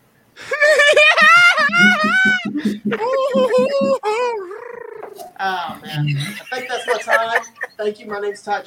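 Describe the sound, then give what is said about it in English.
A parrot squawks and screeches loudly during a stand-up comedy set, in a long, wavering run of shrill, warbling calls that rise and fall in pitch, with brief gaps between bursts. “We had a deranged parrot going off during your set.”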